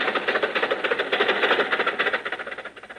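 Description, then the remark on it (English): A car engine chugs steadily with a fast, rattling pulse, holding a rough mid-pitched rumble for about three seconds as the car rolls forward, driving into a crowded drive-in theater, with no one speaking. “Come on, Jack. Drive inside.”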